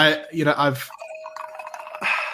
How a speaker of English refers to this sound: Ooh, fancy. We're adding soda water to it.